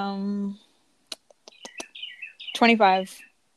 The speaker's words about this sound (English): oh my god, the bird sounds so nice